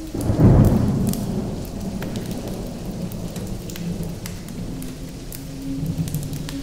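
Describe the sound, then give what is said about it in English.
A thunderstorm: a deep rumble of thunder swells at the start and slowly fades under steady, hissing rainfall, with scattered raindrop ticks continuing throughout. “And that's the best part about making sound effects, is you can change your whole environment.”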